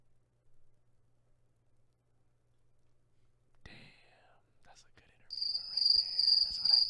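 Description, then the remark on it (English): A cricket chirping sound effect: a steady, shrill trill that begins abruptly in the second half and stays loud to the end, following a stretch of near-silence with faint rustles and whispery noises. “He's got the crickets.”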